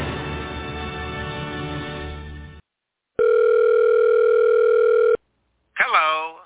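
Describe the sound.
A loud, steady electronic telephone ring sounds once for about two seconds after a dense burst of sound, then an answering machine greeting begins right after it.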